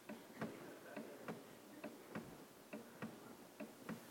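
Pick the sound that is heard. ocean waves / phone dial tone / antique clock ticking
antique clock ticking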